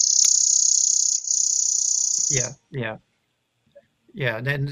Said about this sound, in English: And they're small birds and they blend in well, so it's pretty easy to overlook them. Chipping sparrow has an insect-like almost trill as well.